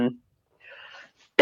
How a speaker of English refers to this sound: excuse me, guys. Sorry. I am a little under the weather, as I mentioned. So if I'm coughing, please forgive me.